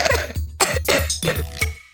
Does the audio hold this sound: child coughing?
yes